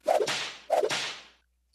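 Two sharp whip cracks in a row, each snapping loudly and then trailing off in a brief hissing swish. They are evenly spaced, with no voices.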